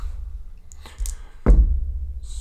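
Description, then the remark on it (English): Several dice clatter as they are rolled in bulk for three different attacks, with a couple of light clicks followed by one louder rattling impact that quickly dies away over a low background rumble. “Going to roll some various dice.”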